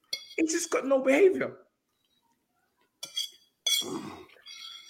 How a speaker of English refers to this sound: You can hear that. Everybody in the audience can hear the plate and the knife crackling.